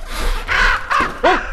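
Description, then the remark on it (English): A raven caws three times in quick succession as it flies past, harsh croaking calls that are loud, each one short and rising then falling, with no talking over them. “a raven just flew past me.”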